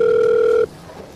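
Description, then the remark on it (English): A single burst of an outgoing call's ringback tone on a call to Legitimates LLC, a steady electronic purr lasting just over half a second through the phone line before cutting off to quiet line hiss. “Just pick up the fucking phone.”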